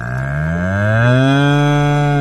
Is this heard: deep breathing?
no